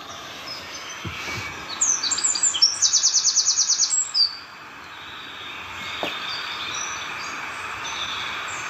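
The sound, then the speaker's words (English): A recording of bird song, slowed down, plays a bright, rapid trill of high repeated notes over steady outdoor background hiss, the phrase lasting a couple of seconds before fading into ambient noise. “This is just some random bird songs on YouTube and then slowed down.”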